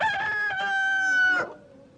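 A rooster crows once, a loud, drawn-out cock-a-doodle-doo that holds a strained tone before breaking off and trailing away.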